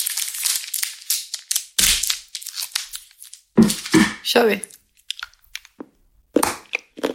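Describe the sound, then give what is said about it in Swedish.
Sharp snaps and crackling as a chocolate bar that has been kept in the fridge is broken apart, with crinkly wrapper rustling and bursts of brief speech between the breaks. “Okej, minus till att det inte var så bra brytbitar. Den har legat i kylen.”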